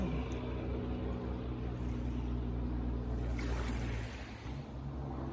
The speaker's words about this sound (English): I'm gonna wait for this truck to go by.